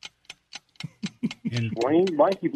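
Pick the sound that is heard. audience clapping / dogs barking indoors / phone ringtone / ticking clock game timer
ticking clock game timer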